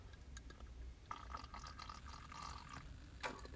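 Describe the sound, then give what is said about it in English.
A White Russian cocktail being sipped, with soft wet slurping and liquid sounds over about three seconds, ending in a short sharper gulp. No one speaks. “But I am drinking my very own White Russian.”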